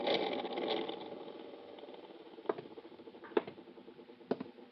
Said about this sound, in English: I'll turn on the overhead fan. Pretty stuffy in here.